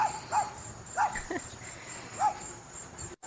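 A recording of a dog giving three short, separate barks spread over a few seconds, with a steady high-pitched insect-like whine running underneath.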